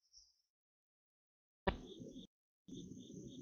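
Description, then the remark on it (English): Faint, high-pitched chirping of crickets and cicadas outdoors comes in two short bursts of steady pulsing trills over a soft low rumble, with a brief quiet gap between them. “We did record this in the great outdoors, so I hope you enjoy the soothing sounds of crickets and cicadas in the background, because they definitely made their guest appearance.”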